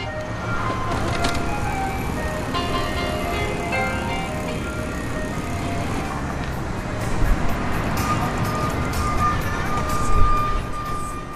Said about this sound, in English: On 18th Street in Pilsen, on the southwest side of Chicago, the ice cream truck searches out new customers.